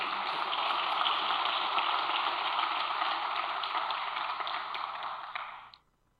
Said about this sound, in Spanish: ¿Tú le puedes dar un aplauso a Dios por eso?